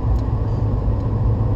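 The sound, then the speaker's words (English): Steady low engine rumble from inside a moving truck driving on a road behind slow-moving vehicles, a continuous droning hum with road noise and no voices. “I went and pulled over to fix something on the truck and now I'm behind the slow-ass moving vehicles again.”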